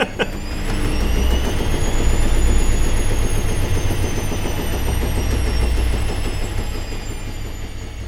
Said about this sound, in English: That felt like one of those bits where you get the washing machine sound and you move on to the next.